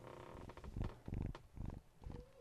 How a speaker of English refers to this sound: Was he purring? He was. We got to get him. We got here. See if we can get him to purr for everybody here. Here we go, buddy.